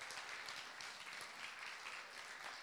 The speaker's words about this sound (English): Let's give them some round of applause.